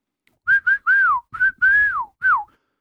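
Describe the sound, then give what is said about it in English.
A person whistles a short tune of six notes, mostly steady tones around one pitch with a couple of longer gliding notes that bend downward, clear and fairly loud with no talking. “Yeah, and whistling too.”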